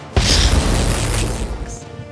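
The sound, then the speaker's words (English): A lightning bolt strike sound effect in a tabletop game, as the bolt strikes out at the group: a sharp crack followed by a loud, booming rumble with crackling sizzle that slowly trails off over about two seconds, with no voices. “As a lightning bolt strikes out at the group.”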